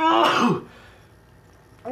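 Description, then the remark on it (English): A single loud sneeze, a sharp breathy burst with a voiced tone that drops in pitch, followed by quiet before another burst begins right at the end. “So, so bless you.”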